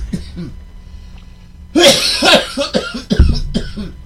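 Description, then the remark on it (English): A woman hosting a broadcast coughs in a loud burst of several harsh coughs, starting abruptly after quieter background voices, with a few fainter coughs trailing off. “I'm sorry, that is the host pointing as she's coughing and pointing for us to continue.”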